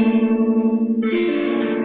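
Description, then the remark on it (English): A distorted electric guitar rings out a sustained close-voiced chord, struck with the picking hand's index finger and pinky, then shifts to a brighter, grittier chord halfway through, played loud with no talking. “I don't want too much distortion for that chord.”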